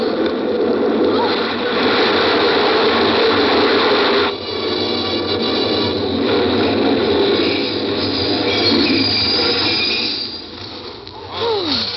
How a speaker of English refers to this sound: Oh, the train was in.